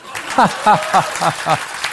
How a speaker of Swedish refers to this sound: Och sen att ni så här skrattar och applåderar samtidigt, kanske.